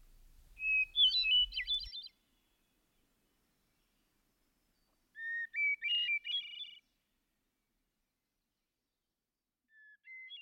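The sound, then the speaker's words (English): A hermit thrush sings its evening song: two clear, fluting phrases separated by a pause, each starting on a held whistle and rising into rapid tremolo notes, with a faint third phrase fading in at the end. “It is the sweetest, ripest hour of the day, and as the hermit's evening hymn goes up from the deep solitude below me, I experience that serene exaltation of sentiment, of which music, literature, and religion are but faint types and symbols.”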